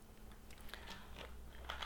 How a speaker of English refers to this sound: He just wants to chew on everything.